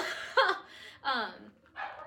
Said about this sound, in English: I'm like exhausted, and I'm like laying down, and I'm like hearing something, you know? I'm hearing that dog that's yapping.